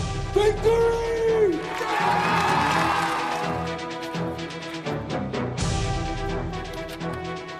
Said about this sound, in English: And you know what's coming now, the Victory Lap theme song. Let's go.